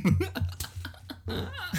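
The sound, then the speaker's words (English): A fart: a low, buzzy rumble lasting under two seconds, sputtering in several uneven bursts with a brief pause before a final flutter. There's no talking over it. “He farted.”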